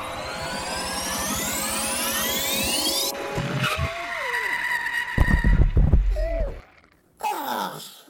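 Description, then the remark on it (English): A vehicle's engine whines and shifts pitch, then tires screech and rumble heavily as it brakes hard and skids to a stop, followed by a brief silence and a final rough burst. “Need to get the brakes fixed on this thing.”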